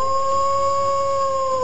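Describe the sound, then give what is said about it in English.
Wolves howl in long, steady, sustained tones that hold a nearly flat pitch throughout, loud, with no talking, only a faint low rumble underneath. “The wolves coming out, baby.”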